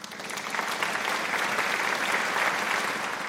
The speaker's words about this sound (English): More canned applause played over the speakers as Clyde swung one of the chickens near the surface of the water.